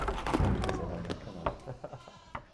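Goats crunching food: irregular, crisp crunches and snaps in quick succession, with a goat-like bleat near the start and a murmur of animal sounds underneath.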